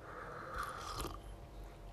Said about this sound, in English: Sorry, sip of coffee.